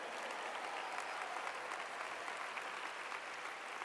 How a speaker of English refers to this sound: So I just want you to know that I'm ready for God to do something in my life on this Friday morning session. If you feel that way, would you clap your hands today?